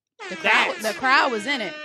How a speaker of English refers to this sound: Let me, I guess I'll go with the air horn.